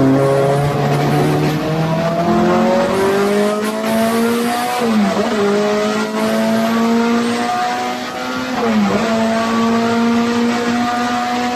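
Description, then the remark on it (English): A loud race car engine climbs steadily in pitch as it is revved to 8,000 RPM in third gear, then dips sharply twice as it shifts and brakes into a tight hairpin turn before revving up again, with a faint tire squeal underneath. “Pretty much just rode it up to 8 grand in third gear there. Turn at the beginning of the hairpin.”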